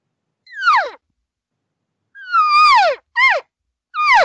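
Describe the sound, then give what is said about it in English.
An imitated elk social cow call: four nasal, mewing cries that slide downward in pitch, one alone, then three in quick succession after a pause, with no talking. “Here's the social cow call.”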